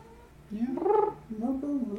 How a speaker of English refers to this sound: Yeah. Our poor cats. Hey, poor cats.